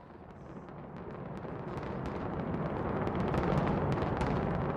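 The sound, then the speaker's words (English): The 2007 implosion demolition of the Stardust casino building in Las Vegas with fireworks and a countdown: a deep, continuous roaring rumble swells steadily louder while scattered sharp pops and crackles burst over it. No voices are heard. “The Stardust was demolished in 2007 in true Las Vegas style, with fireworks and a countdown.”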